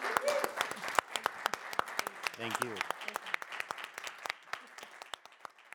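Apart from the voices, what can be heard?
audience round of applause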